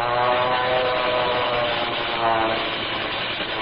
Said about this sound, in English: And there's that other plane. Hey, look, the second plane has made a dive on them. They're going to it.